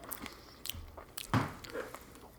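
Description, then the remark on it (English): Quiet chewing with a few sharp crunches as small hard bitter seeds are bitten and ground between the teeth, irregular mouth noises over a couple of seconds with no talking. “I just want you to throw those in your mouth and just start chewing.”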